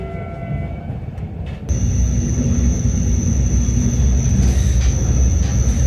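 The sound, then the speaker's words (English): A train rolls steadily along the railway past a ribbon of built-up area, a loud continuous low rumble with rattling wheels, joined partway through by a sustained high-pitched squeal or whine that holds to the end. “It's, as I say, there's a ribbon of built-up area that we're kind of passing along, the railway passing along, probably contributed to that development, even though everyone seems to drive, sadly. On the move, anyway.”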